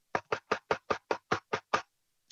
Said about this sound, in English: And all of a sudden I hear. Knocking. Do you hear this? Here, I'll do it.